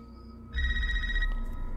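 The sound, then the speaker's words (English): A telephone rings once in a movie trailer, a bright, buzzing electronic trill lasting under a second, loud over a deep low rumble that continues after the ring stops. No one speaks. “A girl answers the phone?”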